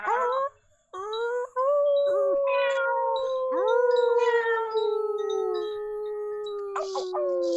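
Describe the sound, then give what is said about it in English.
Several people in a group exercise howl like wolves as part of cheers and animal calls, long wavering cries that rise and fall in pitch and overlap almost without pause, with a few brief sharper calls near the end. “Get those wolf howls going.”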